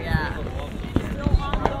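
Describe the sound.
Several sharp booms and pops from fireworks burst at irregular intervals over a steady background of murmuring voices and outdoor crowd noise.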